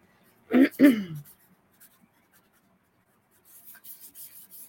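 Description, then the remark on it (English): A pen or pencil scratches across paper in a quick series of short, soft strokes as a name is written, following a brief vocal sound and a pause of near silence. “I got to look at my paper here. See, Nancy Ramsey. Let's get your name down there.”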